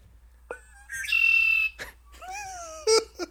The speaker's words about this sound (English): That red-winged blackbird, though. Yeah, that was really disappointing.